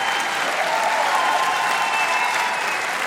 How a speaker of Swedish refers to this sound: Just det! Folket jubel!